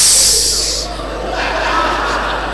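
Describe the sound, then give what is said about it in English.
A person imitates a snake with a sharp hiss lasting under a second, trailing off into soft breathy vocal noise. “He was like, snake.”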